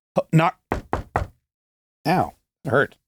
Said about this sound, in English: I bruised my knuckle. It's hopefully also going to, that was me knocking on wood, by the way.